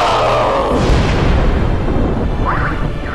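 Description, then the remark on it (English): A massive, sustained explosion of an unstable vortex within a well's depths roars loudly with deep rumbling low end and crackling debris throughout. It is dense, with no sharp single onset, and fills the whole stretch before easing slightly at the end as it rocks a temple to its foundations. “The massive explosion rocked the temple to its foundations and sent massive quakes ripping through the tortured earth.”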